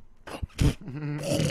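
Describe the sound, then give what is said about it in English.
A voice imitates the snoring and choking sleep-apnea sounds of a former roommate: a few rough, breathy snorts, then a strained, wavering groan-like gurgle, fairly loud, with no talking. “He'd start snoring and shit and just weird ungodly noises.”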